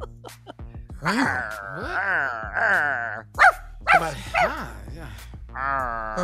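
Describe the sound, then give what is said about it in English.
People imitate a dog, making drawn-out, wavering growls and groans, then a quick run of three or four short, sharp barks before another long moaning growl, all fairly loud. “Would you rather, guys, would you rather growl when you're hungry or bark when you're full?”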